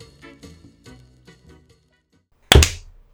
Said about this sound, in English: Awesome. I didn't actually clap, I slapped my desk. That's fine.